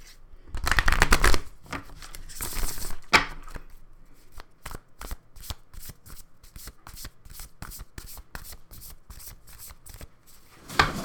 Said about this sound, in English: I'm pulling again from the Spellcasting Oracle deck. Let's do some shuffling, if I can get my hands around them.